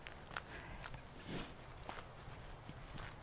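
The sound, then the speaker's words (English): Footsteps walking outdoors out to a vegetable garden, a slow, uneven series of soft crunching steps over a quiet hiss, with one louder, brighter scrape partway through. “I'm going to walk out here to the vegetable garden and just look at the path of destruction.”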